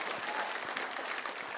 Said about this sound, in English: It's okay to clap for that.